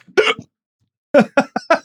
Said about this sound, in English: Oh, you got the hiccups already. It's giving me the heat hiccups.